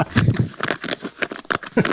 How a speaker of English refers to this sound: So I went home, I got it, and I did a little recording on my phone that was like this. And I scratched my jeans like this